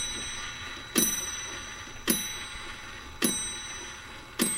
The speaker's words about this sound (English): It had a brass pendulum that would methodically tick away the moments behind a small glass door etched with delicate gold filigree.